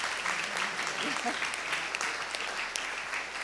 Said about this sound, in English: So in wrapping that up, so I just want a little thank you, round of applause to our amazing people.